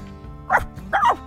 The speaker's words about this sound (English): Do you have a dog? Probably just the stray.